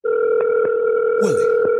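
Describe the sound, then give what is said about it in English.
A steady, unbroken telephone line tone hums loudly throughout at the start of a prank phone call, with a few faint clicks and a brief swooping chirp near the end; no one speaks. “It is my prank phone call of the day.”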